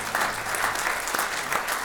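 An audience claps steadily, a dense wash of applause at moderate volume that holds for a couple of seconds without pause, with no one speaking over it.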